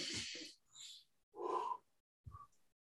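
Audible deep breathing: a long noisy inhale followed by a slow, slightly wheezy exhale, in several airy bursts with short pauses between them, and no talking.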